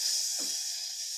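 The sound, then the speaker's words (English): A voice imitates meat sizzling on a grill with a steady, sharp hiss lasting about a second, with a brief breathy puff partway through. “So when you put it on the grill, it goes, it's a nice sizzle.”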